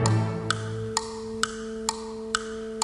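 A clock ticks steadily, seven crisp, evenly spaced ticks about twice a second, over a constant low electronic hum, with no voices.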